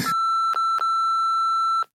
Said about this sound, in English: Do you want to do it and I'll beep it out if it's bad?